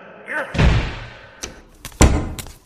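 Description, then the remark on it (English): A door is pushed shut with a heavy thud after a brief squeak, followed by a few sharper clicks and knocks as it settles and latches. “Redo the door.”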